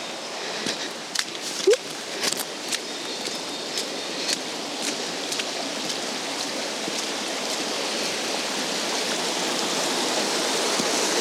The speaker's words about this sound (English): Standing on the bridge, so you can hear the river. It's roaring away.